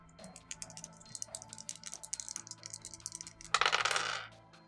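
Dice clatter and rattle across a hard tabletop in a rapid, uneven string of sharp clicks, ending in a louder burst of tumbling before settling. Fairly loud, with no voices.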